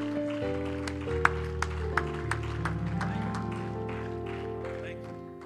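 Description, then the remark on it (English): An audience claps in praise of the Lord in a steady rhythm, sharp hand claps landing about twice a second over sustained organ-like chords at a moderate level. “Come on, give the Lord another hand clap of praise.”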